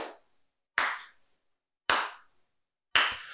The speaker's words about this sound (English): And you hear slow footsteps echoing and growing closer to you, and a figure donning a blue robe sarcastically starts clapping.